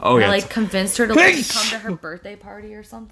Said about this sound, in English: Bless you.